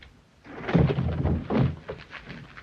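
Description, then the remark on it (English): A heavy punch lands with a dull thump, followed by another solid thud as a man is knocked to the floor, then a smaller knock; fairly loud, with no talking. “This brass just knocked a guy on the floor.”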